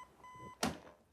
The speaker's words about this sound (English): What a weird alarm.